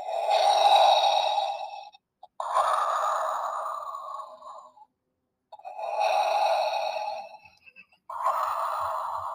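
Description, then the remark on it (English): Electronic Funko Pop bobblehead toy playing recorded breathing sounds: four long, hissy inhale-exhale cycles with brief pauses between, mechanical and evenly paced, fairly loud, with no talking. “It's three different things, and it's two different breathing patterns.”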